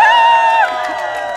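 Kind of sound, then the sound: crowd, protest crowd cheering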